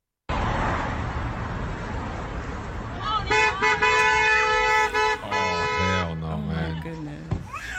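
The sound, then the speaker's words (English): Busy street traffic roars steadily, with several loud car horns honking in overlapping bursts midway through, and raised voices mixed faintly into the din as a couple argues in a car. “She to continue the argument instead of watching out for the kid in the middle of stinking traffic.”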